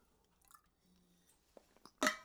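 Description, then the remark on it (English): Quiet sounds of someone drinking from a Chili's water bottle: small wet clicks and a soft swallow, ending with a louder burst as the bottle is lowered or the lips release. “the Sound of Success Chili's water bottle. Time for one last drink before we say goodbye”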